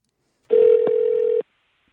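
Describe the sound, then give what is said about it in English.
A single steady electronic telephone tone sounds for about a second, loud, with a faint click partway through, as a phone call to Paul Rosen is placed; no one speaks. “Okay, let's get Paul Rosen on the phone and talk weed.”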